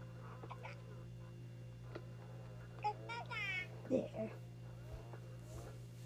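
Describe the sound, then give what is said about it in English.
A baby girl held in someone's arms gives a short, soft burp amid brief squeaky fussing sounds, all fairly quiet over a steady low hum and faint whispery noise. “Oh, what a burp.”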